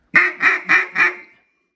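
Four loud quacks blown on a duck call in a quick, even rhythm, each a short raspy note, with no talking.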